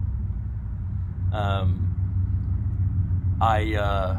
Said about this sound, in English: we bonded over motorcycles, and which you can probably hear in the background. Yeah, there's two just passed as I said that.